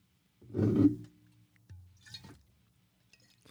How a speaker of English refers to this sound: What you don't see is he's downing a bottle of whatever it is. Let's get started. It's just water, but it's a wine bottle. I just wanted to do that for effect.